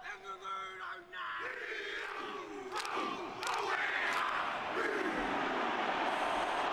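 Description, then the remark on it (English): A team chants a tribal war cry during their warm-ups, many voices shouting together in loud, rough unison, with sharp yelled bursts over a steady roar that builds toward the end. “That's like an example of like some of the stuff that they yell at each other.”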